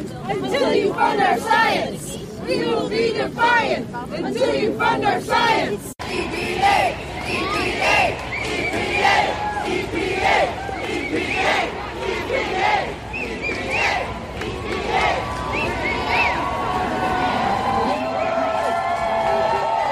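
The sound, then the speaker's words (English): A large crowd at the March for Science in Washington, D.C., in the rain, just outside the United States Environmental Protection Agency, screams and cheers without pause, many voices overlapping in loud, rising yells and chants, with one sharp crackle partway through. “I can still see people screaming into the mall.”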